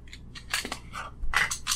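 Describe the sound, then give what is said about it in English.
The dungeon master's dice clatter across a tabletop for a saving throw in a quick burst of sharp rattles and clicks, tumbling for under two seconds before settling, with no voices over them. “The dice are out, gentlemen. Ours have been out. Yeah, but the DM's dice are out.”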